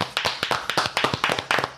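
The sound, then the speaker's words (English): Several people clap together in honour of a team that won 7-0 against United at the weekend. The claps are a quick, uneven patter of sharp, crisp hand claps that overlap into a steady burst of applause, fairly loud, with no voices over it. “So I think it's only right that we all contribute and give them the clapping of version.”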